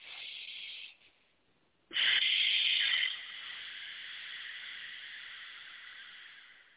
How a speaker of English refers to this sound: it's kind of like you're sucking your breath inside your throat. so that you can release all the energy in there and then let it all out